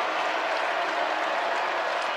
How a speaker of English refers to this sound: Now you can hear the crowd. They stand as Marquette has come back from 18 down to within 4 with 14:48 for the game.